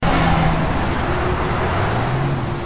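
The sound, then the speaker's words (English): A car engine rumbles and slows amid steady traffic noise, a low humming drone that shifts slightly in pitch as Wiseau rolls up in his car and idles, in a trailer for a movie. “Wiseau rolls up in his car and sees him.”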